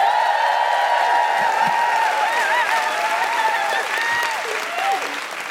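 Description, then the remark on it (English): A crowd applauds loudly and steadily as Carriott Lloyd is welcomed to the stage, with whoops and shrill cheers rising and falling over the dense clapping throughout. “Please welcome to the stage, with general hooing and defiant cheers, Carriott Lloyd!”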